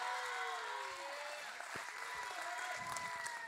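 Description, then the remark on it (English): A youth ministry church audience claps steadily throughout in a dense, continuous wash to welcome a speaker up, with whistles and cheers rising above it. No one speaks, and the clapping stays loud and sustained the whole time. “Come on, so let's put your hands together, let's clap,”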